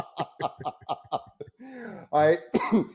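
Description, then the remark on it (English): A coughing fit: five quick, rhythmic hacking bursts, then a few louder, strained, raspy coughs and wheezing breaths as it trails off. “Oh God, I'm going to have a coughing fit.”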